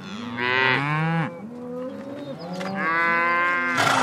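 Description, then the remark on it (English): Several cows moo in long, drawn-out calls, overlapping one another as the herd is driven down a dirt road with an ATV following behind, loud, with no talking. “When she's unsure how close to get behind the cattle as they amble down the dirt road”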